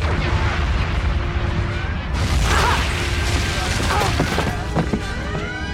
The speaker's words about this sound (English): Guys, listen. I accidentally put a firecracker in this box of foam rocks and saw blades. And I gotta tell you. it might have just gone off when the captain said, "Load torpedo bays."